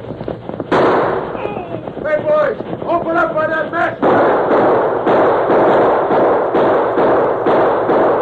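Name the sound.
gunshots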